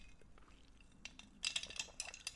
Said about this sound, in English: And just quickly on this, just gonna take a sip of my coffee.